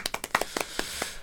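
A brief, light round of applause: a handful of sharp, crisp claps in an uneven patter, fairly quiet, with no one speaking.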